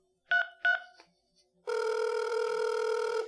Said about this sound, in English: I grip the wheel with my half-trembling left hand and dig into my pocket with my right, pulling out the rectangular piece of stone that is my cell phone, nervously pressing three digits.